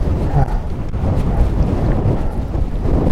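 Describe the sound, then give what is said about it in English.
Steady, loud wind buffeting the microphone, a dense low rumble with gusty surges throughout and no voices, on an open hillside during a 60-mile running race near the village of Dent, in dry weather after some rain. “The views are amazing. It's a little bit windy.”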